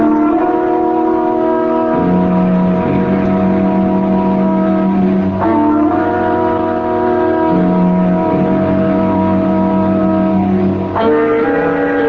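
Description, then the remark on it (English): An old motor car engine chugs along with a steady, buzzing drone, shifting pitch twice as it changes gear while pulling away. No one speaks. “And if you don't want that, take yourself and your schemes and your newfangled motor car and get out of town.”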